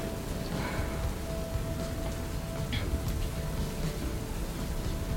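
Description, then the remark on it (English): Heavy rain suddenly pours down in a dense, unbroken hiss that stays steady throughout, with a faint constant tone humming underneath and no voices. “A heavy rain just comes out of nowhere.”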